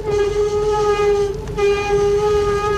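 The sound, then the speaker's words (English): A loud, sustained metallic brake screech rings at a steady mid pitch with strong overtones over a low rumbling clatter, briefly faltering midway before squealing on without any voices. “Slam the brakes for a second.”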